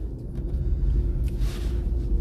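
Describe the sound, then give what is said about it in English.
A steady, low engine rumble fills the inside of a truck cab, droning continuously at a moderate level with a faint airy hiss above it and no voices. “Sorry, I'm in my truck.”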